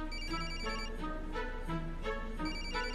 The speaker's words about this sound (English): We could stop. We could turn it off. Oh, turn off my phone? Please. I'll put it on vibrate. It'll be fine.